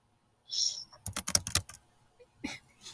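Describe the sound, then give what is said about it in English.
A quick flurry of crunchy keystrokes on a computer keyboard as someone searches for something, loud, clattering for under a second before trailing into a few softer sounds and brief quiet. “Enjoy my crunchy keyboard noises.”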